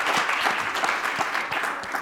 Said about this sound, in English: Round of applause for him.